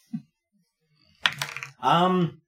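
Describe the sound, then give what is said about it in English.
Dice clatter briefly across a hard tabletop, sharp, with a few quick rattling hits, followed immediately by a short drawn-out vocal groan. “Stupid dice.”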